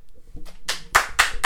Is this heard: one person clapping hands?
yes